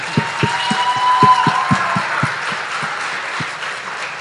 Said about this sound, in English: So anyway, I would just like to give them a round of applause.